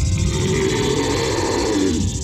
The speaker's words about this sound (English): And that's when they hear the roar.